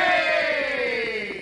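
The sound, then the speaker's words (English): A group of soldiers let out one loud, sustained cheer together for the Lone Ranger and Tonto, their voices blending into a long rousing shout that dips slightly in pitch as it fades. “Men, give our friends a cheer.”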